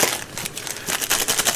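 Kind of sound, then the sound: household object, plastic bag crinkling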